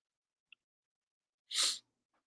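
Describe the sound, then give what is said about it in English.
A single sharp sneeze bursts out of near silence, preceded by a tiny click and followed by a faint breath, with no talking. “And I just got hit with a sneezing frenzy of three sneezes in just a couple of moments.”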